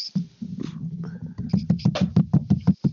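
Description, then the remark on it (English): Muffled knocks tapped right on a microphone, about nine quick evenly spaced thumps in a row, mimicking someone banging on a door, preceded by a moment of low rumbling handling noise. “Someone's like banging on the door, you know? You know, like jiggling the door handle and stuff.”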